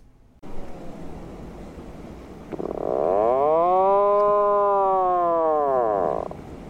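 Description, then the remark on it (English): A loud outdoor tornado warning siren, being tested in Texas on the first Wednesday, winds up and holds a long, steady wailing tone with rich harmonics for several seconds, then cuts off, over faint background noise. “That's a freaking tornado siren. They're testing it.”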